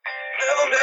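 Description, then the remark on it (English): The same song, played by two people at the exact same time, kicks in abruptly and plays loud for under a second, its layered tones doubled into an echoing, slightly smeared wash. “We'll both randomly pick a song, Rob, and then we'll play it at the exact same time.”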